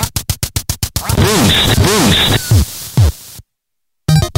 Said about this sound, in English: Do I have the duck hunt boost? I should have the duck hunt boost. I made the goddamn thing. I think it's this one.